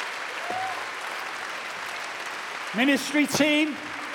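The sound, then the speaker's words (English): A crowd stands and applauds people who have just responded, a dense, even wash of clapping that holds throughout, with a couple of short voiced shouts or whoops rising above it near the end. “Why don't we stand and applaud these people who have just responded?”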